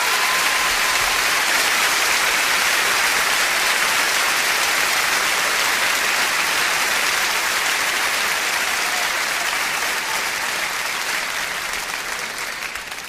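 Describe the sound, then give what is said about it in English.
A large audience claps steadily to welcome a band as they come on, a dense, continuous wash of applause that holds strong for about twelve seconds before beginning to taper slightly at the end, with no voices over it. “Would you bless them with your hands as they come, please?”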